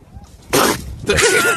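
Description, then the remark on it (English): A seal snorts air through its nose in two loud, breathy bursts, the second longer and rougher, with a wobbly, flapping buzz like a wet raspberry. “It's a seal breathing.”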